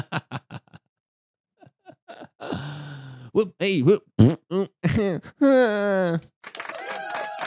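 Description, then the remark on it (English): A voice imitates a fart with a string of sputtering, buzzy mouth noises, short pops at first, then longer blubbery and groaning bursts, loud with no other sounds. “And then I just fart and then I leave.”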